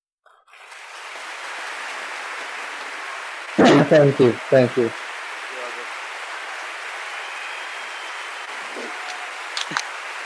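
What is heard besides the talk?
clapping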